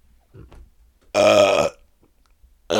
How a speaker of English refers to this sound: And got a burp.